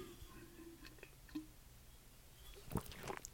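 Someone opens a water container and takes a first sip of water: quiet, scattered little clicks and rustles, then a brief, soft slurping burst near the end. No one speaks.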